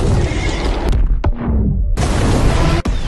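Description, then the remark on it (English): Huge cinematic explosions from a movie trailer roar out in two heavy bursts, the first rumbling and fading into a low whoosh before a second thunderous blast hits, with a brief sharp cut near the end. “Michael has personally expended over 3,000 tons of movie-grade TNT without any regard to our sense of hearing or story.”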